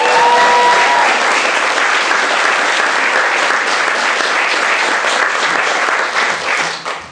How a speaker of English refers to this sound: Big round of applause.